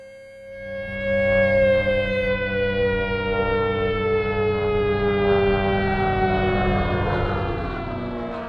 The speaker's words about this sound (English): Neville Chamberlain declared war on Germany at 11:15 on the 3rd of September 1939, and 2 days after their invasion of Poland, his speech was followed by what would become the familiar sound of air raid sirens.